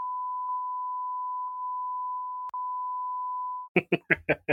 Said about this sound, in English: That's my please beep. That's my beep of the week.